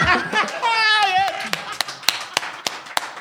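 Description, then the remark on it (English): A brief whooping, warbling voice is followed by sparse, uneven audience applause: about eight sharp, separate hand claps rather than a full roar. “Now, I got record five applause breaks.”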